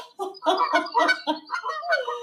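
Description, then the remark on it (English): Canada geese honk in a rapid, overlapping run of about half a dozen nasal calls, fairly loud, with no one talking over them. “I'll get my Canadian geese.”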